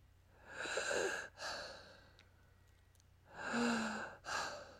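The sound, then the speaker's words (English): A voice imitates slow, eerie breathing heard at night with the lights off: two long, breathy inhale-exhale cycles with a hissy, raspy texture, fairly loud, separated by a quiet pause. “So I turn off my light, getting ready to finally fall asleep, and all of a sudden, with all the lights off, I start hearing this breathing, and I'm going to do a replication of it.”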